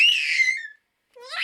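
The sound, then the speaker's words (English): Two piercing, high-pitched squealing screams of a baby mermaid, like a tiny creature shrieking, loud, the first trailing off downward before a short silence and the second rising sharply. “Mika was developing quite a reputation for having quite a powerful Mermini scream.”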